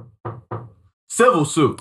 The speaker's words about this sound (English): Charges might get pressed or some lawyer might knock on that door.